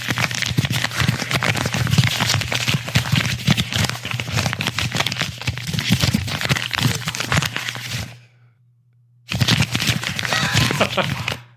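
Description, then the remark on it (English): Paper tearing and crinkling as an envelope is ripped open to reveal the winner of a vote, a dense crackly rustle that runs steadily, breaks off for about a second, then resumes. “The winner is, let me just open this envelope.”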